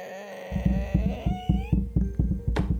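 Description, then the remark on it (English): The old door of a dilapidated house creaks open in a long, wavering, high-pitched groan, with a steady rhythmic low scraping drag beneath it as it pushes metal wasp bodies along the floor, and a brief sharp rasp near the end. “There's a little bit of a drag sound, because as the door opens, you see that it is also pushing a couple of metal wasp bodies along the floor.”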